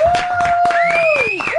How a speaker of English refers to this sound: The slow clap. She gets the slow clap.